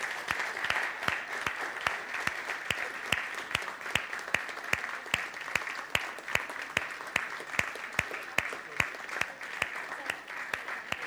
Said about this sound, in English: Men, please would you all stand up? Just the men. Now, turn around, look at the women. I'd like you to give them a great round of applause and a clap for who they are, who God made them.